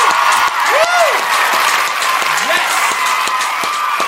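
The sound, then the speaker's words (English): Loud, steady studio audience applause on the show Stray Cast Outdoor Cartoon Television, a dense wash of many hands clapping for about four seconds, with a few sharper individual claps popping out above the crowd, one clapped right into the microphone. “Sorry, I clapped right into the mic.”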